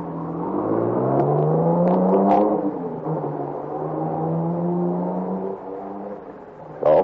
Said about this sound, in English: They run inside and come out again with 2 other guys. They all pile into the car and take off through the village, supposedly after me.